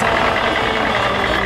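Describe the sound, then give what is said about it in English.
A heavy dump truck engine rumbles and knocks at a steady idle, loud, with a dense mechanical roar that holds constant throughout the brief moment and no voices. “Dump it up the dump truck.”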